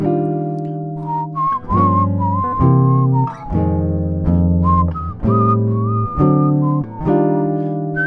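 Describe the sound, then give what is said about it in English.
A whistled melody imitates a jazz saxophone solo, its bright tone sliding and bending over a backing of sustained chords that change every second or so. The whistle is clear, with no talking. “So let's see if I can actually whistle what he does.”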